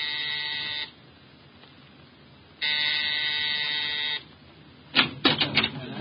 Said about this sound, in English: At exactly 7, I rang Mrs. Collins' doorbell.